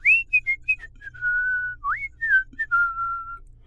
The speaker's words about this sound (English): So Kandata went for a swim and whistled to himself.